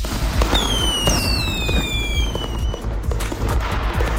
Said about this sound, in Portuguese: Sério? Pum, vamos soltar. Sério, rojão.